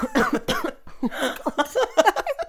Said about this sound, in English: I did not mean to cough in your earlobes.